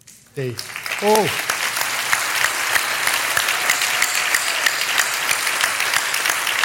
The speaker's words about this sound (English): I want to recognize this team. May I ask you guys, wherever you are, to stand up so that the church actually, with a good applause, encourages you.